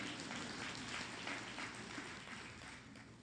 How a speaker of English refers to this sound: Well, that one went over big. We have to edit out all that clapping back there.